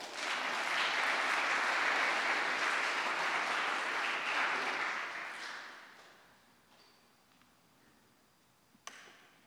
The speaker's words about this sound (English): So a huge round of applause for Maggie.